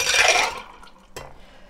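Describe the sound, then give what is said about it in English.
Ice, blueberries, vodka, absinthe, lemon juice and simple syrup being shaken rattle and clatter in a burst of bright, hard knocking for about half a second, then quieter scraping and one sharp glassy clink. No one speaks. “So ice, blueberries, everything goes in the clink.”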